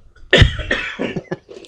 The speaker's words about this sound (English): I got to cough off the mic here.